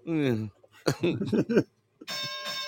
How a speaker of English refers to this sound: You get a bell.